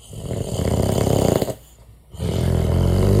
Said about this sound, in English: here's … snoring at, let's see, 2:34 a.m.